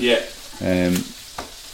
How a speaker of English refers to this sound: Wild spinach, or was it just big like spinach, yeah. Huge leaves, they look gorgeous. So they're just going straight in a frying pan with a knob of butter.